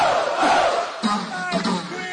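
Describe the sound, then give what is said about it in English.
A large crowd at a show roars, then breaks into loud, short shouted chants of "ho" in a quick repeated rhythm, many voices yelling together. “For somebody yell ho! Say ho, ho, ho, ho!”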